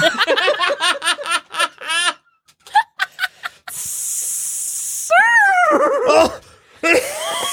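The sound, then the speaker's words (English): A frantic, scared horse whinny as a helicopter lands next to it, with rapid quavering pulses, followed by short bursts, a long steady hiss, then another shrill, falling neigh, all loud. “Oh, that horse is getting real scared.”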